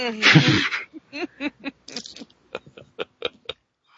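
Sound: sneeze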